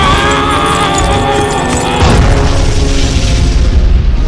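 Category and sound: sound effect, explosion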